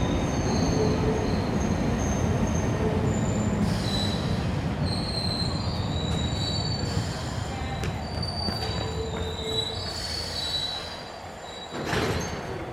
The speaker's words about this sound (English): With a blast of air and a squeal of metal brakes, the train sweeps into the station and stops beside the platform.